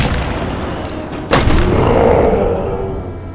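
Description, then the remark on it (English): A single loud cannon shot booms out partway through, its sharp blast trailing into a long rumbling echo over a steady noisy background, with no one speaking. “stuff one of those Yonkel spores in the cannon.”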